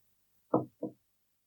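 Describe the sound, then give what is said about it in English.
Two quick taps on the door of a dwelling, moderately loud, with a short gap between them, in an otherwise quiet setting. “I tap the door, looking frantically around for any signs of life that may pose a threat.”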